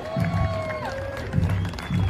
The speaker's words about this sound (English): Ladies and gentlemen, round of applause for these distinguished veterans of the Roosevelt Aurora American Legion Post 84.